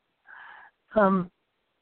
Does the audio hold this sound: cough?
yes